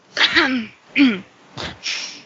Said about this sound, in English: It's the dust. The dust is making everyone cough.